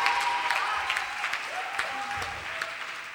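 An audience claps steadily and loudly for the full three seconds, a dense crackling wash of applause with a few voices whooping and cheering over it.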